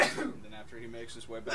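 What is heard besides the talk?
sneeze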